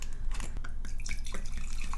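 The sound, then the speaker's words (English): Sweet red Italia Roscato wine pouring into a glass: a steady, trickling splash of liquid with bright, gurgling bursts, continuous for about two seconds at moderate loudness, with no talking. “This thing that sounds like someone pee.”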